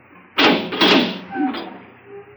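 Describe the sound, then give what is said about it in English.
A heavy door swings open with a loud scraping rush that lasts about a second, followed by a brief creaking squeal and a low fading rumble, no voices. “Open the door.”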